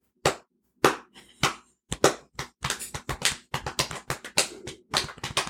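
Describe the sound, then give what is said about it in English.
Sharp, fleshy belly slaps, a few spaced smacks at first, then a quicker, uneven run of repeated slapping with no talking. “You know what we haven't done for a long time? Come on. Belly slaps.”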